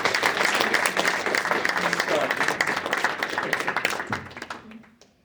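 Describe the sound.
A crowd at a book event applauds with dense, steady clapping that holds strong for about four seconds, then thins out and fades into scattered claps and murmuring voices.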